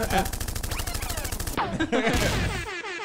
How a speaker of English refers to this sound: Gunshots.